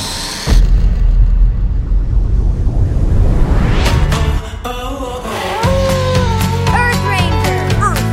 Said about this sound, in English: But after taking off in her trusty airplane, she's shocked that she may have a stowaway on board.